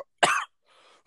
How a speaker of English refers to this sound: All right, Dave Meltzer, with your cough. All right, well, I've been draining it out.